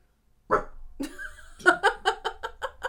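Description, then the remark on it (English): A dog staring at a person lets out a single bark, then a drawn-out whine, followed by a quick rhythmic run of about seven sharp barks, fairly loud, with no talking. “Yeah, how can you stare at me and bark?”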